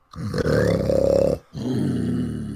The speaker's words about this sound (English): You knock on her bedroom door. It opens slightly, and from within you can hear the sound of a mighty dragon sleeping.